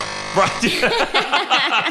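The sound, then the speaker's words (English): A harsh, steady game-show buzzer drones for nearly two seconds, loud, with voices talking over it. “You guys are instructed to use those buzzers anytime I make a contradiction, I say something you disagree with, if I say something false, so you'll never be hearing those buzzers throughout the entire show.”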